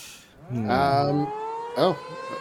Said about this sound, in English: Do we hear sirens? Is it the sirens? Yeah, I hear them.